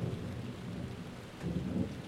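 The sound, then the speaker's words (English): A recorded thunderstorm at the end of a song: steady hissing rain with a deep, rolling rumble of thunder underneath that swells louder near the end. No voices, just the continuous storm filling the space. “Gotta get the thunderstorm in there. It's the end of the song.”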